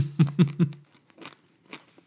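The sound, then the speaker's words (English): Three loud crunches in quick succession as someone bites into a triangle of crunchy buttered fairy bread, followed by two softer, scattered chewing crunches with no talking. “Crunchy. It's very crunchy, isn't it?”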